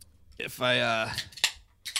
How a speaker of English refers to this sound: Speaking of a taste, I know it is only Tuesday at a little after noon, but I think I want to crack open this Coors Light.